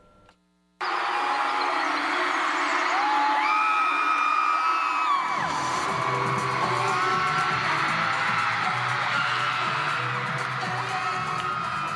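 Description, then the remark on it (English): A loud crowd of concert fans at a pop concert residency show in Chicago cheers and screams continuously, with high-pitched whoops and shrieks rising above a dense roar that swells and holds steady. “The cheering fans, the funky fits, the rhythmic music.”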